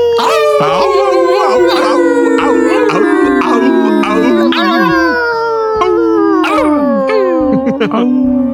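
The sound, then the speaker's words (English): Several overlapping voices imitate a dog's howl, holding long, loud, wavering awoo tones that slide slowly downward over a steady thumping beat. “Deep awoo. Deep awoo.”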